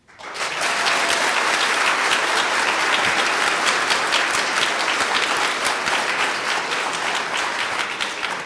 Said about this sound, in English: So first off, now you react with applause, of course.